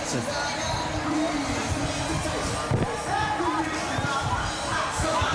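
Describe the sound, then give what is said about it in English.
A loud, dense crowd of fans lining a downtown team parade roars steadily throughout, with overlapping shouts and cheers blending into a constant wash of noise, punctuated by occasional sharp thumps and claps. “I hope you're able to feel the energy that we are here. The noise, the level of excitement, it's a thrill to be a part of.”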